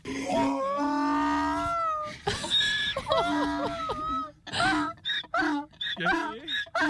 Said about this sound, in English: That was the donkey, right? Oh, he's so happy. He's so happy. They're so happy.